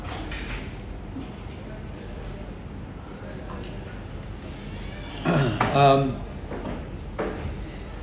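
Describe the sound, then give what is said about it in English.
A door is handled and locked: a short burst of rattling and clunking near the middle, louder than the steady background murmur with faint voices. “Fine, don't lock it, man. Don't lock it.”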